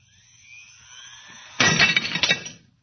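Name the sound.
drinking glass shattering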